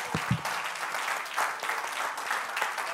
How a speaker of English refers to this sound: If you're ready to receive the word, clap your hands unto the Lord and magnify him one more time.